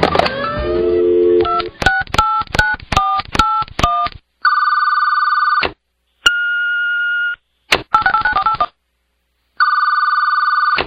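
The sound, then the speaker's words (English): A rapid series of answering machine keypad touch-tones, each a short dual-pitched beep, followed by longer steady tones with brief silences between them, clear and loud with no voices. “And now, our favorite answering machine messages.”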